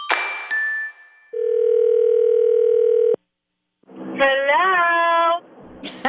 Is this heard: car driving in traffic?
no